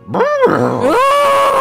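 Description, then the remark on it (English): A person imitates an alarmed elephant with a loud, brassy trumpeting cry that swoops up and down in pitch, then holds a strained, wavering note to the end. “It didn't sound happy. I will say that you don't need to roll anything. That didn't sound like a happy elephant.”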